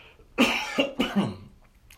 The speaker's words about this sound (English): Excuse me, I'm coughing a little bit.